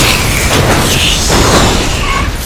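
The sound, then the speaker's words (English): A video game car crash, a car crashing into another car: a loud, sustained wash of crunching, roaring noise with metallic whines riding on top, steady in volume for a couple of seconds before easing slightly. “You crashed another... Oh, my God. ...fucking car.”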